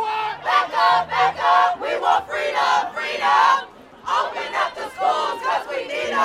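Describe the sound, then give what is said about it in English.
A large crowd of tens of thousands of teachers, low-wage workers and Black Lives Matter activists marching through downtown Chicago at rush hour for $15 an hour and union rights chants in loud, rhythmic unison, voices rising and falling in steady syllabic beats, with a brief pause before the chant starts again. “The march continued on to the subway before joining up with tens of thousands of teachers, low-wage workers, and Black Lives Matter activists for a march that disrupted rush hour traffic throughout downtown Chicago.”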